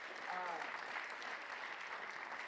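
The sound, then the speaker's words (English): A crowd claps steadily for the speaker's grandmother, a dense, even wash of applause with no pauses, briefly mixed with a faint voice or cheer near the start. “So you can give my grandma a round of applause.”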